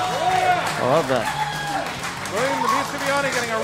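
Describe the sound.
A crowd gives a loud, sustained ovation for a former Movie Trivia Schmodown champion as he is introduced: steady applause mixed with cheering and whooping voices that rise and fall throughout.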